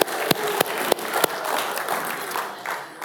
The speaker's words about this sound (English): Quick round of applause, appreciation.